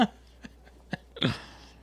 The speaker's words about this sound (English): Hiccup.